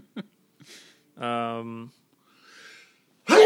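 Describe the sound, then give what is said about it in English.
A sneeze builds up with short breaths and a drawn-out voiced "ah", then ends in a sudden loud, breathy burst. “Bless you.”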